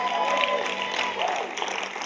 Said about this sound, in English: Come on, give Jesus a big clap.